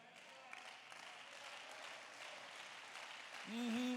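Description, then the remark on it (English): An audience claps steadily, a delayed clap during a morning sermon, for several seconds, a dense, even patter of many hands at moderate loudness, before a man's voice starts speaking over the tail end. “That's why that hand clap was delayed, because some of you don't believe what I'm preaching this morning.”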